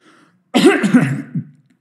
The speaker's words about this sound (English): Good, because I'm going to cough.